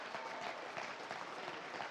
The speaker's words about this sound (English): How many years did you serve? Five. Come on. He stood between the enemy and you for 5 years. He ought to get a little bit more than that. Yeah, for anybody who's ever served, we applaud you. We thank you.